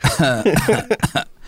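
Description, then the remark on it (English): A rapid series of short cough sounds made with no exhalation of breath, each pitched a little differently, fairly loud, bursting out in quick succession before trailing off into silence. “He's just got cough sounds coming out of it in different tones.”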